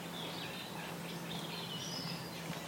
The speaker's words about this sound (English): I can hear multiple reed warblers. A lot of reed warbling going on in these reed beds. It's clearly very good habitat for them.